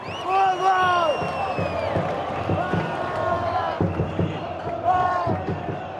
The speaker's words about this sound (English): I went to Morumbi Stadium to record a game between Brazil and Bolivia, and the crowd was insane. I would just, you know, move around the stadium and listen for pockets of chanting and cheering or loud fans and listening for the energy.